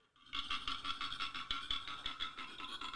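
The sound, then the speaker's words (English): A koala's cry: a loud, rasping bellow of rapid repeated pulses, snorting and grunting almost like a pig or donkey, starting after a brief silence and continuing steadily without talk. “go ahead with your koala bear cry here”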